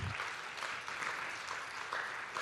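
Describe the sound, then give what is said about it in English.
A crowd claps steadily in a sustained, dense burst of applause lasting a few seconds, fairly loud and even throughout, with no voices standing out. “Come on, you can give him a better round of applause than that.”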